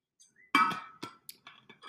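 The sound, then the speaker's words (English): Drinking water from a glass: a bright glassy clink followed by a few short sips and swallows in quick succession, with no talking. “I think I need my drink of water because my mouth is feeling dry. So let's do the weekly water drink.”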